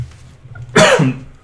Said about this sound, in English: It's like a fucking tickle cough I've had for a few days now.